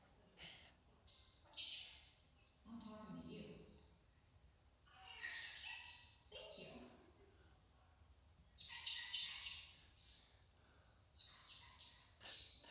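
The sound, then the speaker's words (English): A talking bird mimics human speech in short, squawky phrases, trading back and forth with its owner's voice. The utterances are brief and separated by pauses, over a faint background. “It's the bird first talking, and then it's the owner and the bird kind of talking back and forth.”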